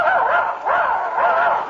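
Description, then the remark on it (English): A voice imitates a dog, giving three quick, yelping barks with whiny, whimpering tones in between, loud with no pause between them. “Now he thinks he's a dog.”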